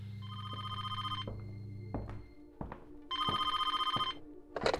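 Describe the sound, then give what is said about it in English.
A telephone bell rings twice, each loud, buzzy, trilling burst lasting over a second with a pause between, along with a few soft clicks and knocks, as a call comes in to the Bevis Funeral Home asking for an ambulance. “More scared than ever, thinking the killer could have still been inside the house when she first found her family, Jenny rang the Bevis Funeral Home for an ambulance, and 16-year-old Rocky Bevis took the call.”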